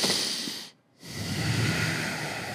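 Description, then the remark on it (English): Two long, heavy breaths, a forceful airy exhale and then a deep inhale, separated by a brief silent pause, with no talking, as a person demonstrates a breathing exercise. “I was doing breathing exercises too, and I just fully lost my breath and almost passed out.”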